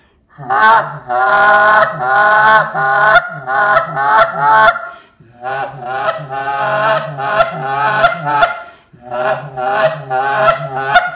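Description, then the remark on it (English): A goose call blown loud in three quick runs of rapid, honking clucks, each trailing into a softer throaty murmur made by putting more air at the end, separated by short pauses, with no talking. “So once I get to that, and I'm putting a little bit more air at the end to get that kind of a murmur with the cluck.”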